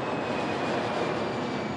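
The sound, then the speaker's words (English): A steady, broad roar of an airplane's engines fills the whole moment, loud and even with a faint high whine running through it, and no one speaks. “a few days later, he hopped on a plane to the Philippines.”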